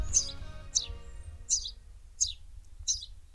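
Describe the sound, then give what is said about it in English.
A house sparrow gives five bright, high chirps at a steady, evenly spaced pace over a faint low rumble of background noise. “And the answer is a house sparrow.”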